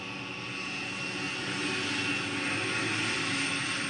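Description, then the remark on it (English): A steady, roaring helicopter jet engine drone fills the scene as it flies off, a broad whine and rumble holding at constant loudness, with no voices present. “And he's off on a watered helicopter jet thing.”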